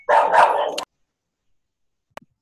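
A single loud dog bark lasting under a second, followed by silence and then a faint short click or yip near the end.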